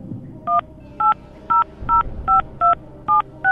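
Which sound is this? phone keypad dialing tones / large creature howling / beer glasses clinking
phone keypad dialing tones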